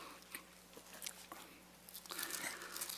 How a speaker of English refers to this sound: And to do that, we have to begin by going back to the book of Genesis chapter 4. Let me hear those pages turn. Genesis 4.